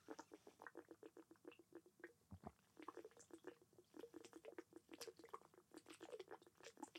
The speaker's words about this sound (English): That's not good to drink that much water that fast. My lungs. You just gave the people some nice ASMR. Did it go down the wrong pipe? Went into my lungs. Yeah, because you were drinking so fast.